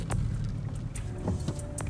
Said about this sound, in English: Backing out of my place. I have to make a right turn onto Cumberland Parkway.